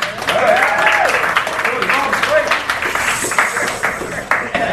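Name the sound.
audience applause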